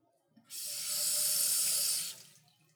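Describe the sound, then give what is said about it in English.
A kitchen tap runs steadily into a sink for about a second and a half while salad is washed, a bright rush of water that starts abruptly and cuts off just as suddenly. “You wash the salad.”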